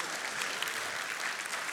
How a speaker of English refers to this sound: Wasn't actually looking for applause, just some acknowledgement. That's all I need, guys.